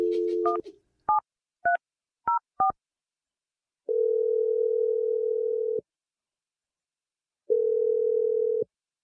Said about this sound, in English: I'm gonna dial the phone. Yes, I was right. Take that energy, and I'm dialing the number right now.